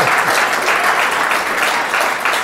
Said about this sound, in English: Yes, clap for that, please.